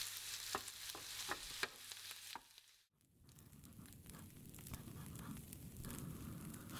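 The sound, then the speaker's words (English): Kitchen sounds with no talk: a run of sharp knife chops over a steady bubbling sizzle, a brief pause, then continuous stirring and scraping over a simmering pot. “The chopping and stirring continue in simmering silence.”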